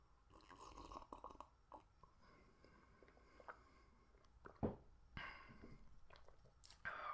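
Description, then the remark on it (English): Quiet slurping sips of hot tea, with soft mouth noises, a distinct gulp midway, and a few faint clinks, no talking. “I'm gonna take another sip of my tea.”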